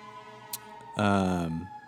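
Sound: police siren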